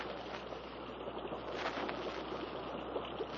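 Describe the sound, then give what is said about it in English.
A steady, broad rushing roar of water fills the scene without pause, soft-sounding, like a waterfall somewhere ahead, with faint lapping of water, heard from a dugout on a swift river current in the jungle. “Sounds like a waterfall somewhere ahead.”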